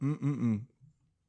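yawn

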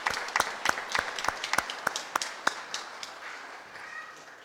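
audience applauding

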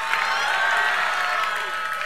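audience clapping and cheering

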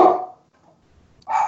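dog barking

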